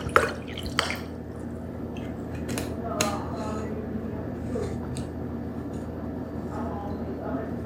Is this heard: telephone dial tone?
no